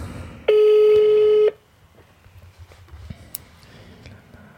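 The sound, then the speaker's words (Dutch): A single steady ringback tone on an outgoing phone call, lasting about a second and fairly loud, then quiet background noise with faint rustling. “Telefoon gaat over.”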